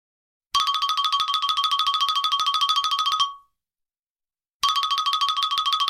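A phone rings with a call from Camille, a rapid, trilling electronic tone, one long burst of about three seconds, a short pause, then the ring starts again. Loud and steady, with no voices.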